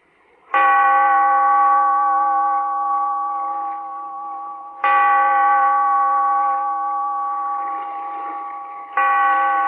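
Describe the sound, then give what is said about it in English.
A deep bell, tolled by the bellkeeper in a cave by the sea to open The Weird Circle, tolls three times at a slow, steady pace, each loud strike ringing out with a long, rich, humming decay that carries into the next stroke. “Bellkeeper, toll the bell, so that all may know we are gathered again in the Weird Circle.”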